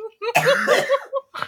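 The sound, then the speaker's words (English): A strained, choking cough: a loud, raspy hacking fit with wheezy voiced gasps, then two shorter, sharp coughs as it trails off. “I couldn't reach my cough button.”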